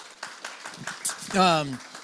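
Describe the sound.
Scattered applause from a church audience welcoming a reader up to read a scripture passage, a burst of uneven claps lasting a couple of seconds, with a voice rising over it in a drawn-out call that falls in pitch.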